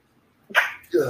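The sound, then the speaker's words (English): A single sharp sneeze bursts out of near silence, followed by a brief voiced sound right after. “Bless you.”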